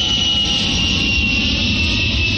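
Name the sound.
airplane jet engine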